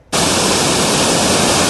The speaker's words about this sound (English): Beneath the picturesque falls of Gold Creek, the body of a 21-year-old Toronto man is lifted from the pools below.